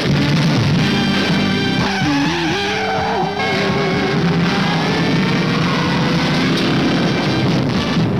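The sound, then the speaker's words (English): A loud Challenger car engine roars and revs continuously, its pitch rising and dropping as it speeds hard, with screeching tires layered in, as it is chased at high speed by police traffic squad cars, with no voices. “The Challenger being chased by the blue meanies on wheels, the vicious traffic squad cars are after our known driver, the super driver of the Golden West.”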